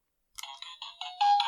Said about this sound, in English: Oh, it's themed and it had a jingle.